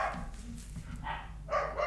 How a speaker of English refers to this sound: Oh, both dogs are barking now. I'm gonna wait until they stop barking to do the meditation.